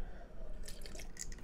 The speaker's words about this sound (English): I'm taking another sip of vodka here.